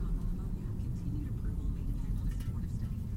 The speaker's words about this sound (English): This car is flying down this road.